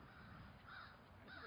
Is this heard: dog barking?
no